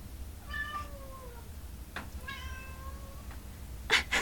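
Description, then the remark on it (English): A cat that wants to play meows twice, long drawn-out harmonic cries, followed by a couple of brief noisy bursts at the end; no one speaks. “Kitty wants to play.”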